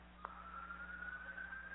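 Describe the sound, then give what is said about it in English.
A faint emergency vehicle siren wails in the background as one steady, high tone that climbs slowly in pitch, with a brief click near the start and a low hum beneath it. “With the sirens in the background.”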